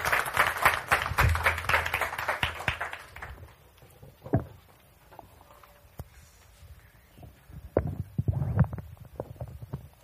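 A burst of audience applause, dense and fairly loud for about three seconds, then thinning out into a few scattered claps and faint room noise.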